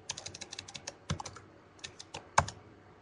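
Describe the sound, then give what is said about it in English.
Rapid, uneven clicking of keys on a computer keyboard, a burst of quick taps followed by a few heavier, louder keystrokes, with no voices. “God, this keyboard sucks.”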